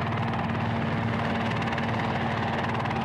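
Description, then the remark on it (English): A helicopter hovers overhead while lowering a rescue basket, its rotor producing a loud, steady chopping roar with a strong low hum, constant throughout with no voices. “Okay, a helicopter is bringing down like a, you know, a basket that you would put people in, like a rescue basket.”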